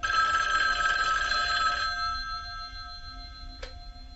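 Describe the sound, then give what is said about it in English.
An old-fashioned telephone bell rings loudly in a rapid metallic trill for about two seconds, then stops and leaves a fading, ringing decay with a soft click near the end, in a bedroom phone call scene. “Deborah asked Jamie to do her side of this bedroom phone call scene where Laurie talks to her friend Annie.”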